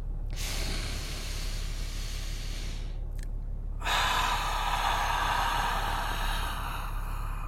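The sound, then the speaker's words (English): A lion's breath breathing exercise: a long, hissing inhale through the mouth, a brief pause, then a louder, forceful, breathy exhale lasting several seconds. No talking. “Something like that is lion's breath.”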